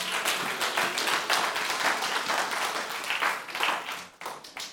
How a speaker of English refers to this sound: Shout hallelujah. Yeah, you can clap for Jesus. Hallelujah.